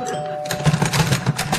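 A two-tone doorbell chime rings out at a front door and fades within half a second, followed by a run of busy, rhythmic clattering and shuffling noises.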